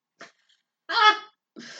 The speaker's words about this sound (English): There was no stopping that. No, that was coming out. I was like, whew. Like, I can't hold it. I'm sorry. You see it right here. It's not happening. Oh, God, the voice inflections. Yeah, so that... You can see when I sneeze.